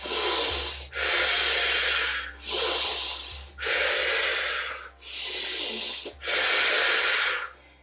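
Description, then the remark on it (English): Forceful, rapid active breathwork breathing in and out during a second round, with about six loud, airy breaths in steady rhythm and no talking. “Keep going, keep breathing. About 15 more rounds of the active breath in the second round before we go into our second breath hold.”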